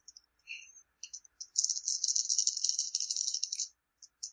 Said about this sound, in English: What am I rolling with? Dice.